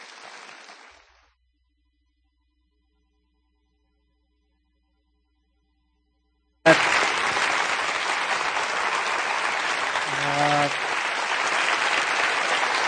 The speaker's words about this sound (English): And I want you guys to honor him with a huge round of applause. He's a great man of God, a friend, and a great mentor.